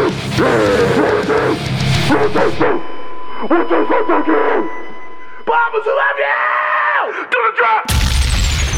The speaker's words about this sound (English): Oh, watch out for the feral dogs! They've been eating people in 1022! I repeat, the feral dogs are eating people in 1022!